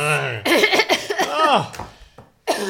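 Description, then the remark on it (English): A loud cough bursts out into the air without the mouth being covered, followed by throaty, voiced rasping and another sharp hack near the end. “Speaking of that massive great cough you did into the air without covering your mouth”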